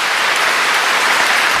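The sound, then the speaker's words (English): A crowd at a funeral breaks into steady applause, dense overlapping claps forming a continuous loud wash of sound with no voices or pauses throughout. “They clapped at a funeral for something she said that was taking a shot at somebody else.”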